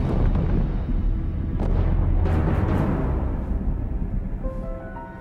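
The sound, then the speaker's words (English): Heavy artillery cannon fire and explosions from Republic guns destroying forward positions boom continuously, with sharp blasts cracking over a deep, rolling rumble that stays loud throughout before easing slightly near the end. “Those guns are destroying our forward positions.”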